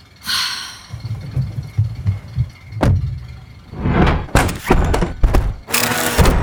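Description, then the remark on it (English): A car door thunks shut, followed by a few sharp mechanical clunks of the locks engaging over low rumbling, with no one speaking. “The door is locked. We're trapped.”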